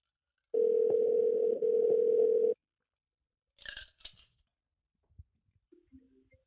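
A single two-second burst of the ringing tone of an outgoing phone call from Denver to New York, steady and clear, followed by silence and a few soft clicks and handling noises. No one speaks.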